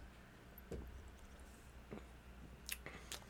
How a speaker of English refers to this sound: It wasn't so bad with the marshmallows. Oh, it was good. I like it. Now I'm going to eat my marshmallows. Yeah, it tastes good.